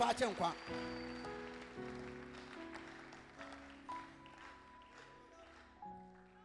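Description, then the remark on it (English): An audience claps in a steady, diffuse patter over sustained keyboard chords, the applause at moderate volume with a few louder bursts. “If you are clapping, clap well.”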